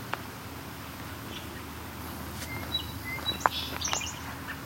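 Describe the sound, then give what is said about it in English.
A very short song sparrow song: a few quick, high chirps and a brief trill in the second half, fairly faint over a steady low background hum, with no one speaking. “Very short song sparrow song.”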